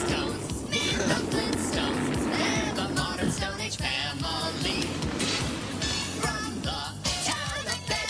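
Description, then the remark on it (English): A new car's engine runs steadily, a dense rumbling drone mixed with rattling and high whining squeals that rise and fall over several seconds. “Damn, did that new car have, like, a motor in it?”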